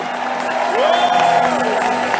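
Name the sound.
audience clapping and shouting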